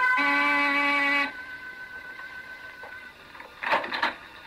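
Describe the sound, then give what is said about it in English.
A door buzzer at 15 Cantilever Walk, a big gray stone building with iron over every window, sounds one loud, harsh electric buzz lasting about a second, with a steady low tone. Quiet follows, then a short clattering rustle near the end. “I rang the door buzzer.”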